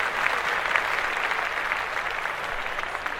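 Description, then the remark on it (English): A steady wash of applause, many hands clapping densely and evenly at moderate loudness for a few seconds, with no voices rising above it. “Clap that up.”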